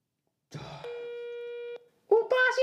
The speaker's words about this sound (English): Alright, It's ringing. Still ringing. Pick up the phone!